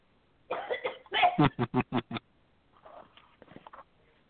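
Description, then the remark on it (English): A person coughs hard, a rough fit of several bursts that speeds into a quick run of short hacks, then trails off into softer, quieter coughs. “Guys, take over for a second while I do some coughing.”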